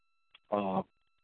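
A faint click, then a single short, buzzy phone beep from an incoming phone call, lasting about a third of a second, fairly loud and alone against silence.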